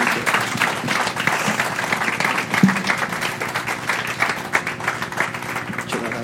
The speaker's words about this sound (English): Guys, let's give them a round of applause as they take the seats.